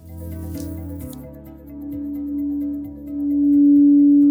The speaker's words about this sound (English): The melodies of the singing bowls and the vibrations of the gong echo through the halls of the Ohm Center on the Upper East Side of Manhattan, where I tried a sound bath for the first time.